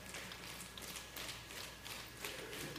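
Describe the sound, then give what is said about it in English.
A crowd softly claps with two fingers, making a quiet, continuous patter of light, irregular taps like drizzle, with no voices over it. “So I just want you to clap with two fingers.”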